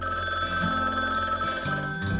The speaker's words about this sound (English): I remember staying at a friend of mine's place, but their phone rang at 2 a.m.